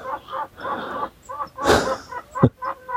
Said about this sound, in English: So those chickens are getting ever so impatient. Let's go and get them their breakfast as well.